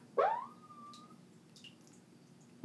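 A siren outside gives a single rising wail that levels off into a brief steady tone and fades within about a second, over a low background hum.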